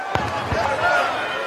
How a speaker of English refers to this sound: Yeah, three chair hits, four chair hits, and he's bleeding at this point. Five.